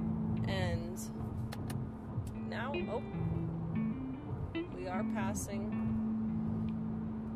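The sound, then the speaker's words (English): Steady, loud road rumble and engine drone from a car moving at highway speed as it overtakes another car, its pitch shifting slightly, with people talking over the noise. “We are surprisingly passing a car down here.”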